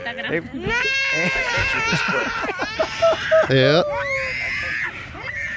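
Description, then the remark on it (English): A child cries and screams loudly and almost nonstop, the wailing pitch swooping up and down, with a sharp harsh outburst midway and a brief voice mixed in. “I wonder if that was the girl that was screaming when Trump won.”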